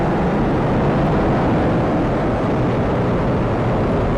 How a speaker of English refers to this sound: Falcon 9 has successfully lifted off from Pad 39A at Kennedy Space Center, carrying the IM-1 payload.